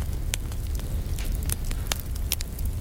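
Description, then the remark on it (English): A log fire crackles steadily, with sharp irregular pops and snaps scattered over a low, constant rumble of burning, with no voices. “I was torn between the sizzle of bacon and crackling fire, and in my head I was like, well, they're so similar.”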